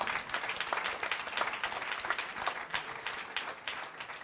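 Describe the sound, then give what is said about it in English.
An audience bursts into sustained applause at the preacher's urging, many hands clapping at once in a dense, steady wash of sound that fills the room for several seconds. “I thought that you will clap.”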